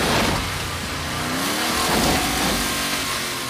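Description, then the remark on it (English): A car engine roars loudly, revving with rising pitch as it accelerates hard and comes ripping in, a dense continuous growl that swells briefly in the middle with no one speaking. “Christine just comes ripping in. And smashes.”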